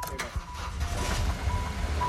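A car engine idles roughly, misfiring and running rough, its low rumble uneven and chugging, with faint intermittent high tones sounding over it.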